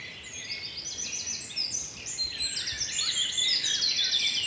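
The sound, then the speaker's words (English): Blackbird and wren song overlap in a busy, continuous chorus of quick trills and warbled phrases, moderately faint over a soft outdoor hiss, on a lane lined with hazel, holly, hawthorn, elder and towering beech trees. No voices. “Blackbirds, really. Wren, blackbird.”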